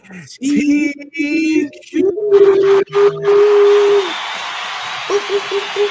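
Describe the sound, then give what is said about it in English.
A woman imitates a wolf howl, with a few short wavering calls swelling into one long, steady, loud howl, then a softer howl returning near the end over a faint noisy background. “She a nice little wolf sound, too.”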